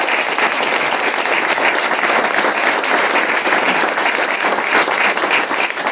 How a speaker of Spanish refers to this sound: Fuerte aplauso para que se quede aquí.